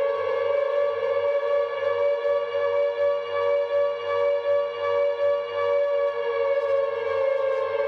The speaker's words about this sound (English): Along with the sound clip, Konami wrote, "Close your eyes. Always scary Silent Hill 2 siren."